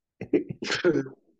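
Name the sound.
cough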